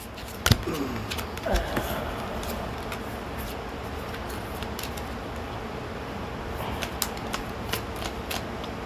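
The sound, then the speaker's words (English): A deck of cards being shuffled during a card game, a dense papery riffle with sharp flicks and snaps early on, then a steady soft rustling that continues for several seconds. “We gotta shuffle these up.”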